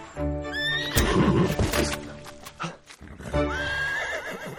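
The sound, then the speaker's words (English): A gelding whinnies loudly twice, with rising, wavering calls, while hooves clop underneath. Prominent, with no talking. “I've got a gelding gone wrong in Oof.”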